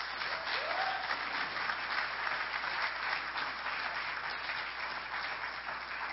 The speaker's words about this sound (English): Would you give her a round of applause?